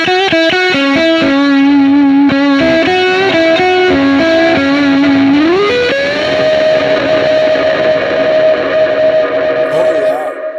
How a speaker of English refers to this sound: But I also have this MXR reverb on an expression pedal. And then it's situated so if I want to, I can do both expression pedals at the same time and bleed in delay and reverb. So it's dry.